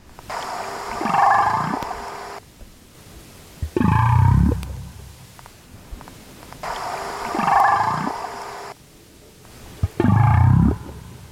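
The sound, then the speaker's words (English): Four deep calls from the whale Twain, recorded during an exchange with researchers in Southeast Alaska in 2021, trade back and forth: two longer, tonal, moaning calls alternate with two shorter, louder, low swooping grunts, each separated by brief pauses with no talking. “This clip is a sample of the exchange that we had with Twain in 2021 in Southeast Alaska.”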